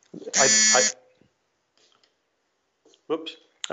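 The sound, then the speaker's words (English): A phone buzzes once, a loud, harsh, rasping burst lasting about half a second, followed by quiet and then brief fragments of talking. “Sorry, my phone buzzed.”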